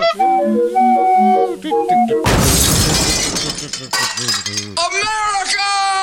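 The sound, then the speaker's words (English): A car crashes into a wall, a sound effect standing for the Trump clown car: a loud, sudden smash with shattering glass bursts in after bright whistling, honking tones, lasting about a second and a half before the tones return. “We have to start every show in which we're talking about Trump with the Trump clown car crashing into a wall.”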